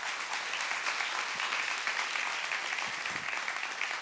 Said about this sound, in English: But what I want to say, I'm thankful that y'all can clap for me. I just needed that encouragement.